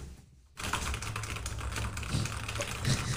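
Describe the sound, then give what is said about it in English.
Fast, continuous typing on a computer keyboard as someone Googles a word, fairly loud, a dense patter of clicking keys starting after a brief quiet moment and running steadily to the end. “Sorry, that was actually hit a keyboard.”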